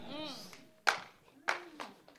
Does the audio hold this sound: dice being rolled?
no